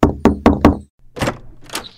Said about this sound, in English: Knock, knock, Mrs. Blackwell!